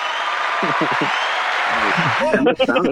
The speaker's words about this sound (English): Dude, I'm telling you, this soundboard has so many effects. It's crazy. I told you I like making crowds cheer.